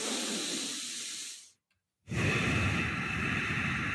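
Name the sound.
fast breathing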